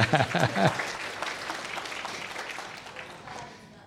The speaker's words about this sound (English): It's okay to clap in church once in a while.